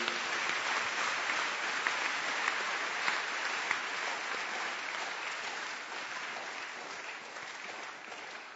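An audience claps hands for the Lord in dense, sustained applause, steady and fairly loud throughout, with a few sharper claps standing out early before it tapers slightly toward the end.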